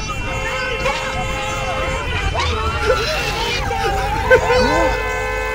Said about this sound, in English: It's a lot of hooting. Yeah. Wow, people are angry. That is... This isn't actually that good. Sounds like traffic.